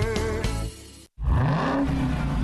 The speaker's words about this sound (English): Most people just hear an engine. We hear a 6.2-liter Hemi V8 with a supercharger that accelerates so fast, it'll suck the air out of your lungs and knock you back in your seat like you're an astronaut in a rocket ship